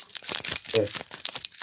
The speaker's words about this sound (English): Jingling keys, that's another one. Isn't it?